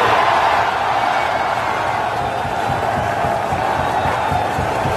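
A large crowd roars continuously as Elon Musk, CEO of Tesla, is introduced, a dense wall of cheering and shouting that stays loud and steady for the whole five seconds without letting up.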